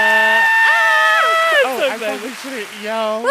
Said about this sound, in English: I'm glad you yelled.